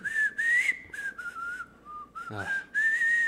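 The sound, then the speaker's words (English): A man whistles a tuneful melody from the film La La Land, clear sustained notes gliding between pitches with brief breaths in between, no talking. “You see, Damien should have had me whistle in the movie.”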